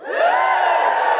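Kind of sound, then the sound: crowd, audience cheering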